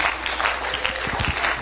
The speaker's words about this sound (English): Would you clap your hands again to the Lord before you're seated? Hallelujah. Praise God.